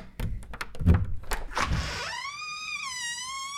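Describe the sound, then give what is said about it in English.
Several heavy, dull knocks thud on a door at uneven intervals, fairly loud, at a late hour on Halloween, then give way to a long, wavering high-pitched squeak like a creaking hinge. “Why on earth would anyone rap at my door at such an ungodly hour?”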